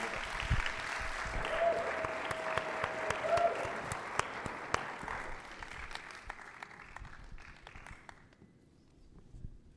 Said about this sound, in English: Could you guys come and join us? And as they do, could you give them a huge hand clap of praise?